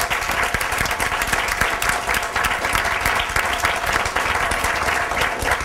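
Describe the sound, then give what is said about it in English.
An audience applauds the speakers at the end of a session, a dense, even wash of many hands clapping at once, loud and sustained for several seconds without any voices standing out. “I'd like to give our speakers a round of applause.”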